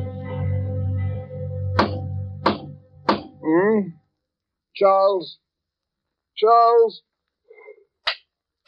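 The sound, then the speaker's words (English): Three sharp, evenly spaced knocks on a door over a low hum, followed by a voice calling out a few times and one more knock near the end. “Someone at the door. Oh, dear, the bell must be out of order.”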